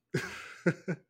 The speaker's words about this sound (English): Muted. I got to do it once. I'm working off a cold here, so I got some cough. I'm unmuting.